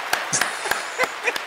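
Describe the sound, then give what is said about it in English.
A handful of separate, sharp hand claps ring out at an uneven, slow pace: thin, scattered applause rather than a roaring crowd, with faint background murmur. “how about that thunderous applause?”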